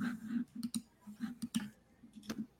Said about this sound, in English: I'm like typing.